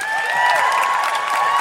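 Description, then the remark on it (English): An audience at a live show applauding the Gotto gang, clapping and cheering together in a steady, loud wash, with a few high whistles ringing above the noise throughout. “Huge round of applause for the Gotto gang.”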